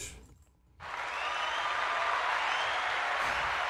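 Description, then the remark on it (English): A burst of canned crowd applause rises suddenly after a brief quiet moment and holds steady and loud as a dense wash of clapping, with no voices over it. “It's the only thing fake on this podcast is that fucking, that crowd we got in the room.”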